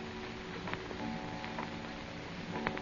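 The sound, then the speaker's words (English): A clock at six o'clock ticks quietly, its sharp clicks sparse and faint, while a soft sustained ringing tone hangs underneath, like the fading resonance of a chime. “6 o'clock.”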